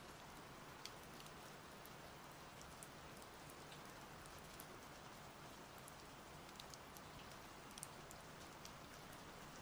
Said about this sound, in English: Take a few moments and listen to the healing sound of the rain washing away.